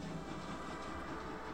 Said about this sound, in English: I dashed aboard the Caledonian sleeper just as it began to chug away from the station.